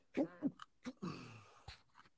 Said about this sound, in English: Just sneezing the mic.